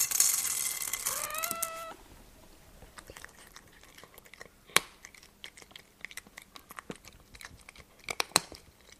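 A cat gives a short meow, then chews food, with irregular crunchy bites and a few louder snaps over several seconds, without any talking.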